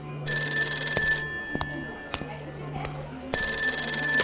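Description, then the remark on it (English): A telephone rings loudly in two bright, trilling bursts, one near the start and another at the end, separated by a pause filled with faint background clatter. “Phone call.”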